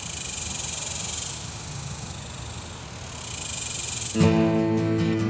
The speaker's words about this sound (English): Nice thing is there isn't a lot of echo, right? There's nothing around me to slap that sound back into my microphone. So you're basically hearing me and the cicadas pretty much.